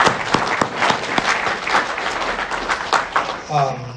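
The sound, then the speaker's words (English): A crowd applauds steadily for several seconds, a dense wash of overlapping claps with a few sharper individual claps standing out, before a voice begins speaking as the clapping tapers. “No, clap for yourself, seriously, yeah.”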